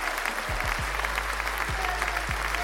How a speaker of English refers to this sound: Today's Golden Nug Award goes to LAX Airport. Let's give them an applause for that.